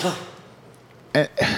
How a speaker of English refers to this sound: Sorry, I muted my mic, but that cough really came through everybody else's. I apologize.